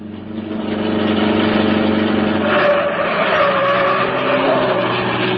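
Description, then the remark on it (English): The Green Hornet's car engine roars loudly and steadily as it accelerates and drives right past men checking on suspects, with a rising rush of road and tire noise midway as it speeds past. No one speaks. “Drive right past them, Cato.”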